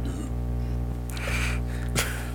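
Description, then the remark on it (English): A man gives a rough, drawn-out burp followed by a short, sharp cough, with a steady low hum running underneath throughout. “He follows the burp up with a cough.”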